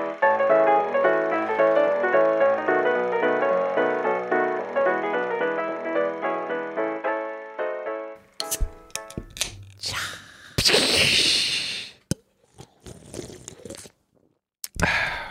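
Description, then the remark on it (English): A short musical jingle gives way to a sharp crack of a can of ice-cold Miller Lite beer opening, a burst of fizzing hiss, then a few clicks and faint slurping sounds as it is sipped. “That is a ice cold Miller Lite. It's the best. It's so crisp. Man, I'm gonna take another sip.”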